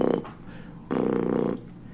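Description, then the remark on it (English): A voice imitates the deep bass thumping of a car's subwoofer speakers as heard from outside the car, with low, buzzy, growling vocal sounds: a short burst, then a longer sustained rumble, fairly loud. “But from the outside, all you fucking hear is. The thunderous roars.”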